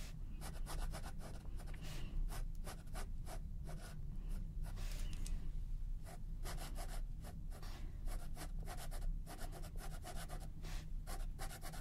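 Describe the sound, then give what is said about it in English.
A fine liner pen scratches steadily across paper in quick, repeated drawing strokes, with a soft continuous background hum and no voices. “I suppose you should probably use colored pencils, but I much prefer using fine liners.”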